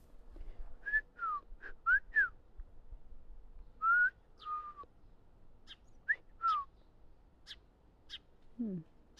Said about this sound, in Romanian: Sunt niște păsări.